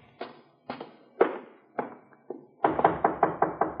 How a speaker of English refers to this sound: Let him knock again.